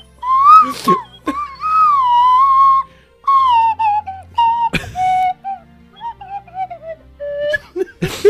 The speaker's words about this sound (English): Play the slide whistle. Yeah, at least you'd be learning a skill for yourself instead of listening to me suck.